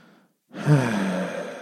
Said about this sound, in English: So in that one, I've just stuck up behind you, got really close to your ear and just sighed, which is reasonably creepy and uncomfortable, but better than just a big growling sniff, I guess.